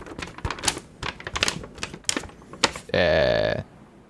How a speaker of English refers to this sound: Do a little magic insert ASMR. Crinkle the insert.